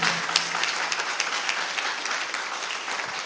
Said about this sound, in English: Why are you clapping as if you are sad? Are you not blessed?